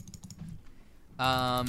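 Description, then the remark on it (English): Quick clicks of typing on a computer keyboard to look up statistics, keys tapped in a loose irregular rhythm for about a second before a person starts speaking loudly over them. “Sorry, I'm gonna do some typing because I want to look up the statistics on this stuff.”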